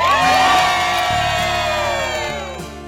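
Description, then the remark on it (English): A large crowd at the Today Show, including many pharmacists, cheers loudly, with high-pitched whoops and shouts layered over a sustained roar that slowly tapers off. “Oh, we got a big crowd.”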